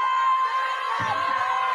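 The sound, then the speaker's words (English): A dense crowd of students cheers a woman on, whooping loudly and continuously, voices blending into a steady roar with occasional higher shouts rising above it. “Now she's instigated these people to be distracted by the proceedings. And now they're cheering her on.”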